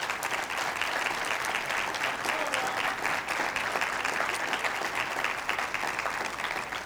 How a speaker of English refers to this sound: And if you agree with me, I just want you to give the ladies a hand clap in the house today.